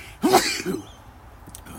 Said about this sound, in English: Oh, I got to sneeze. Hold on. Sorry about that.